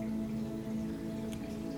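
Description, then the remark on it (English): Steady, soft rainfall hisses evenly onto grass and soil throughout, with a low sustained hum running underneath and no voices present. “It's as if the rain is pouring down.”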